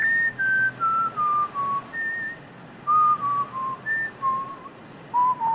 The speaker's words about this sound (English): When they part ways, Nick whistles the theme to John Wayne's The High and the Mighty, 1954.